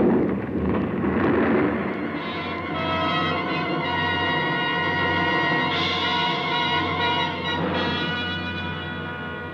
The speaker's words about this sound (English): It must have been the shots that loosened the snow and ice on the ridge above. I heard the sound, and I ran, ran!